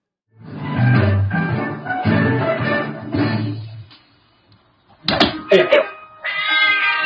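A cat in a video lets out long, drawn-out meows, then a few sharp clatters and thumps, followed by more meowing; the cries are loud and strained, almost like a yowl.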